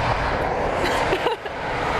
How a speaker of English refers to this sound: Oh, the train's coming. Oh. That one's going to London.